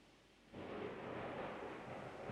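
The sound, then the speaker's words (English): A deep rumble of thunder from a passing storm rolls in suddenly and keeps growling steadily, broad and heavy, with no voices over it. “Can you hear the lightning?”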